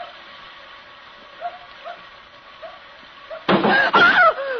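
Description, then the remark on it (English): Two heavy thuds strike the back of a car in quick succession, loud and sudden, after a stretch of faint little dog yips and whimpers. “Something hit the back of the car.”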